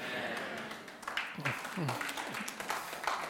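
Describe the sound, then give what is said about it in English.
A group of people at a church clapping in a scattered, irregular patter, with voices calling out and talking over the applause. “So all those that are clapping, we're going to have a party here at church, okay.”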